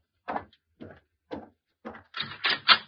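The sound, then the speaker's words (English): A door being opened to answer a visitor: a few spaced, muffled thumps followed by a quick burst of louder rattling and clattering from the latch and handle, with no voices. “Answer the door.”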